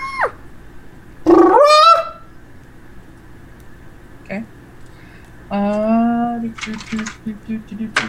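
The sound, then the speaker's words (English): A person vocally imitates an elephant's trumpet as a bonus action in a game, to try to scare two others, letting out two loud, brassy, wavering blasts separated by a few seconds of quiet, the second followed by short choppy sputters. “Oh, as a bonus action, can I just, like, make a big elephant noise to try and scare the other two?”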